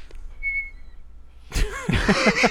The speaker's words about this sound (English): All I hear is a whistle through your nose. All right. Through the whole hour 45.